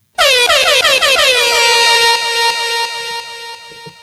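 A loud air horn blast sounds in a series of rapid, sweeping stabs that settle into one sustained blaring tone, running for about four seconds before cutting off.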